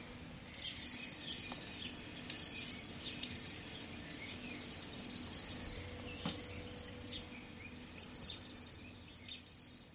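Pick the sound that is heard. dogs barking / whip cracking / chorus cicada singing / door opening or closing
chorus cicada singing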